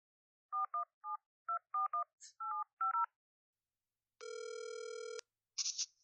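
A quick run of about ten touch-tone dialing beeps, followed by a single steady ringing tone lasting about a second, then a brief crackle as the line connects. No one speaks.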